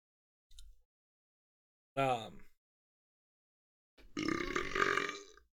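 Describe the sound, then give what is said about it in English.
Three burps after drinking Crown Apple with Pepsi: a short soft one, then a brief tonal belch with a rising pitch, and after a pause a long, loud, raspy burp lasting over a second. “Ooh. Gross. Crown burp.”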